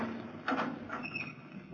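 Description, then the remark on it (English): A heavy prison cell door is unlocked and pulled open: a sharp metallic clunk followed by a brief grinding squeak as it slides, with no voices. “Unlock the door”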